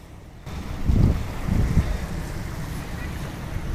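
Steady wind rushes across a microphone while ocean waves wash onto a beach, heard from a jetty with open ocean on one side and the beach on the other. A couple of heavier low surges of surf break before settling into a constant roar.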